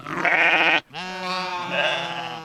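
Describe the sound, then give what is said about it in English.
Two loud sheep bleats from a couple of sheep in a big box follow one another with only a brief pause: a short wavering cry, then a longer, drawn-out quavering call. “A big box containing a couple of sheep.”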